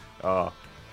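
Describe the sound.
A single short, loud sneeze with a strongly voiced, tonal burst lasting a fraction of a second, surrounded by quiet background.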